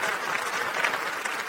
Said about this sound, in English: Round of applause to the Rob Father.